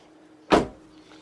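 A single solid thump of a car door shutting as the driver gets out of the car after a demonstration, fairly loud, with a brief low rumble fading out afterward against a quiet background.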